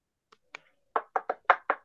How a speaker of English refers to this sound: The knock on the desk.